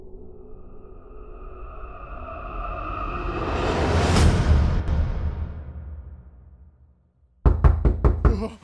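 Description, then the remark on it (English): A swelling whoosh rises and fades into brief silence, then a quick series of four or five loud knocks rap on a door with no one speaking. “I awoke to a knock on the door.”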